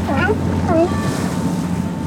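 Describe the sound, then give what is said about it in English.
A rocking boat's steady engine drone runs beneath a constant rush of ocean water and wind as it heads past the Point Bonita Lighthouse in the Marin Headlands and a yellow buoy covered in sea lions, with a couple of brief, wavering animal-like calls near the start. “We head up past the Point Bonita Lighthouse in the Marin Headlands, past a yellow buoy covered in sea lions.”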